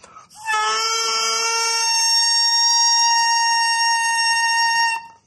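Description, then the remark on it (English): A bare double reed taken from a bagpipe chanter, blown on its own, gives a bright, buzzy, nasal tone called the crow that wavers briefly at the start, then settles into one steady controlled pitch for about five seconds, fairly loud. “That's the reed vibrating, opening and closing. Now here it is, a little more control.”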